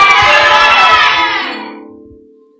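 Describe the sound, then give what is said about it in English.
A large crowd screams and cheers loudly all at once, a dense roar of many voices that holds for about a second and a half, then fades away. “May the Lord make your testimony so loud that even people that act in portion, cool, come and collect it, will scream like that on your behalf.”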